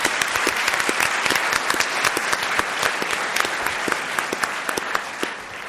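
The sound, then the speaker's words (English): A crowd applauds steadily, many hands clapping in a dense, sustained wash of sharp claps that holds at an even loudness throughout, with no voices standing out. “So my thanks to all of you, and a round of applause for all of you.”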